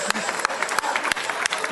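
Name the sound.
one person clapping hands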